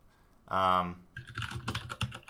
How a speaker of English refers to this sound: There goes your mechanical keyboard again. There goes the keyboard.